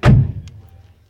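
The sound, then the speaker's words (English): A single car door slams shut in a garage, a heavy, solid thud with a short low rumble fading out afterward and no voices. “Got the car doors.”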